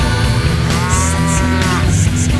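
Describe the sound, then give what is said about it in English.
A heifer moos loudly with a long, drawn-out low call, set against a steady musical backing with rhythmic high hissing accents. “She's a dirty little heifer and she does it in the mud.”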